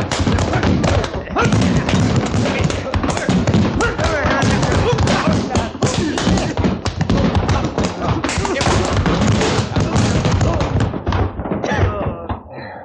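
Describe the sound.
A loud, chaotic fistfight: rapid, irregular punches and heavy thuds pile up with scuffling and grunting voices for about twelve seconds, then drop off abruptly.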